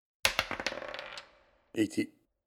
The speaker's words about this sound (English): So double, you roll 2 dice.